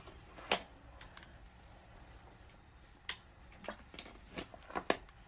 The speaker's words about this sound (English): Ooh, got to give me a squig of water.